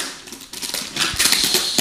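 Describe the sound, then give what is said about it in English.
Crackling rip of gift wrap sealed with packing tape being torn open from a fragile gift, a continuous papery rustle dotted with sharp little snaps, growing louder after the first half-second, with no voices. “Rip it like a bang. I don't want to break it.”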